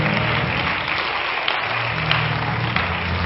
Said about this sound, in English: To all of our guests that are here, so glad that each and every one of you is in church with us today. Why don't all the home folks give our guests a good hand clap?